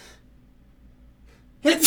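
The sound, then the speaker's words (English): A single loud, sharp sneeze bursts out near the end after a mostly quiet stretch with faint voices in the background. “I got a sneeze.”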